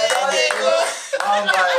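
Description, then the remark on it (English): A few slow, separate hand claps, spaced roughly a third of a second or more apart, clapped one by one in a public viewing centre as a team is losing, sound over a steady voice-like tone that continues throughout. “And then somebody just starts clapping one by one.”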